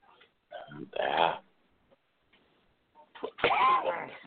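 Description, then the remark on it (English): Two rough, voiced coughs a few seconds apart, fairly loud, with a brief quiet gap between them and no talking. “That was coughing.”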